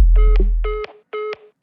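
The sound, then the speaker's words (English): Electronic telephone keypad beeps from pressing 7 repeat in an even rhythm, four bright buzzy tones about half a second apart, with a deep bass rumble under the first one. “To block this call and all future calls, press 7.”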